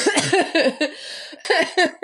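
A loud fit of coughing: several harsh, rapid coughs in quick bursts, a brief pause, then a few more hacking coughs, with no talking.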